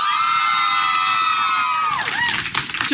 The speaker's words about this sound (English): Number three was, if you really think that Harry is a horcrux, make your embarrassing cheering here.